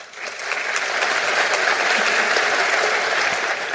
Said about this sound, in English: Wasn't that awesome? It was beautiful. Yeah, you can applaud again.